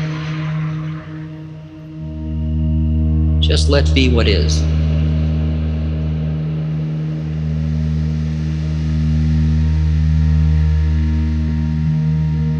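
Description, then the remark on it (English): A bus or truck passes in traffic, its engine rumbling loudly and steadily, a deep droning hum that sets in early and holds throughout, with a brief spoken phrase over it. “Don't push against the bus or truck passing, the horn.”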